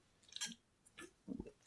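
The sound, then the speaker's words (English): Someone chewing a crunchy biscuit: four or five irregular, crackly crunches with dry, hissy bursts and soft thuds between them, no talking over it. “I need to do some of this. Biscuits. Very nice.”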